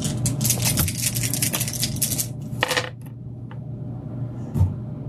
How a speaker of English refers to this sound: Roll four dice. Okay. So you roll one dice because that's the chainsword, and then then the number of shifts you got. Add your wrath dice as well.